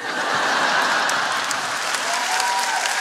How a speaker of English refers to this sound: Clap.